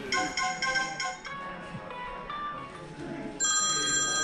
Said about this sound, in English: This is crazy though, it's one phone after another. Yeah. And they just keep ringing.